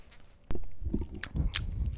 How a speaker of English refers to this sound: Crunch, boy. Crunch. Bite into the crunch, waffle, you freak. Crunch. Oh, yeah. Darn that waffle sounds amazing.